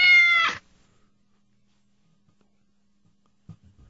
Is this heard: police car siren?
no